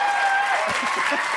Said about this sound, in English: That was nice. I like that applause. That's the applause of, he really worked hard on that.